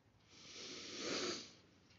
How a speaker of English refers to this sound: Let's do some breathing. Ready? Breathe in.